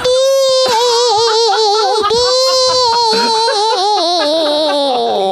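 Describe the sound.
A voice imitates a little shriek, a loud, high-pitched, wavering wail that rises and dips and holds for about five seconds, sounding almost like a crying baby.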